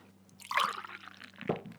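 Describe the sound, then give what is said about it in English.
Cold Moosehead Lager, a Canadian beer, is poured into a glass in a brief, quiet splash that settles into a soft fizzing gurgle, with a second small slosh near the end over a faint steady low hum. “Right, I'm going to put my beer in it.”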